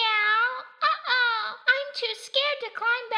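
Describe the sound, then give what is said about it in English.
A high, whiny voice imitates a kitten, giving about four drawn-out meows in a row, each rising and falling in pitch, loud, with brief gaps between them. “Meow! Cried the little kitten.”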